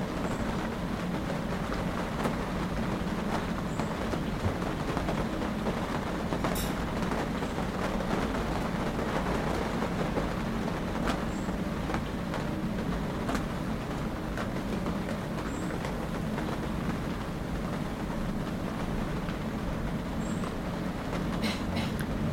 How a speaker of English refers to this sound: Feel that the sound of the rain is as close and as intimate to you as are your thoughts and feelings.